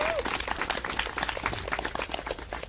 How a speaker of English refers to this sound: So why don't we just give them a round of applause now?